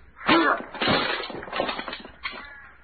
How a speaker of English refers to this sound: it never fails to amaze me how you can destroy virtually any door with one blow. Oh, this one was nothing, only 2 inches thick.